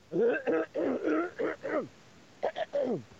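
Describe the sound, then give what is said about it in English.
A person repeatedly clears their throat, making a run of short, voiced, grunting bursts with a brief pause before a final few. “Excuse me, I'm just trying to clear my throat here.”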